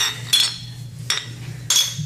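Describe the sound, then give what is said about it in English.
Three bright glass clinks ring out one after another in a toast with Ballast Point Sculpin India Pale Ale, each with a short shimmering ring, over a low background hum with no talking. “And quick cheers, just because now you know we can't do this without your own cheers.”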